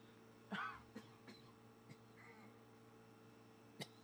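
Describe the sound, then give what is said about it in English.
A single sharp cough rings out, followed by a few soft throat sounds and a second brief cough near the end, over a low steady hum with no talking. “Pause for cough.”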